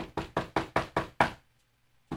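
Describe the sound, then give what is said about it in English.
A quick series of six sharp knocks on the back door of a house at about 1 o'clock in the morning, evenly spaced and fairly loud, followed by a brief pause and then one more knock. “Somebody knocking on the door?”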